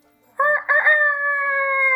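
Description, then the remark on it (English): A rooster crows once, loud, heard over a video call, with a choppy, stuttering start that stretches into a long, steady held note. No other sounds are audible. “he was very patient with our language barrier around roosters”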